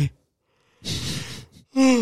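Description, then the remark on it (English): A breathy yawn: a long airy inhale after a brief pause, then a short voiced, groaning exhale trailing off at the end. “Fuck hell, I can't stop yawning.”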